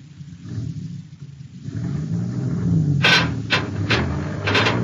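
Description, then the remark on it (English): A heavy truck engine rumbles low and steady, its revs climbing as the truck is driven straight ahead, with a few short hissing bursts near the end. No one speaks. “You tell your driver to pull the truck straight ahead now.”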